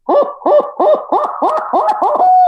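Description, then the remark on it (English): A voice imitates a barred owl's basic eight-note hoot, demonstrated as a call for turkey hunting: eight quick, rhythmic hooting calls in a steady run, fairly loud, with no other sounds or talking. “I mean, you're going to give an 8-note hoot. Just a basic 8-note hoot.”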